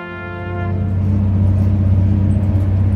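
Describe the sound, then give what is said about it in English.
A deep, steady engine rumble with a strong low drone, rising in loudness over the first second and then holding at a constant, throbbing level, heard on board an older, refurbished intercity train connecting to Trieste. “Now on the connecting intercity train to Trieste, it's like sitting in a twin prop turbo. Listen to that.”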